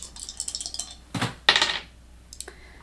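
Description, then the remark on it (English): Fate dice rattle and clatter across a hard surface, a quick run of small clicks followed by a couple of louder knocks as they settle, with no voices. “Fate dice in, because...”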